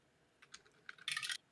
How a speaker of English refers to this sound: That was the wrong dice. Too much damage. Roll again. No, it was my D4 instead of my D8. I just saw a pointy dice and I picked it up.